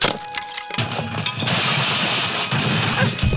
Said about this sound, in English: I just fell through the fucking porch, man!